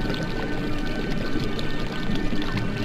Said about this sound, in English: I struggled to hold my breath as the water around me started to boil and bubble.